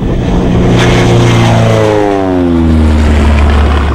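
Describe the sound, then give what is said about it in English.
A loud propeller plane engine drones, its pitch rising and sweeping as it revs, with a steady roar and no voices. “So I think we know how to handle flying a plane.”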